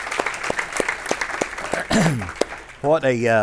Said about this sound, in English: I tell you what, we ought to give the Lord a good hand clap, because it's a big deal to be in the presence of God. Amen.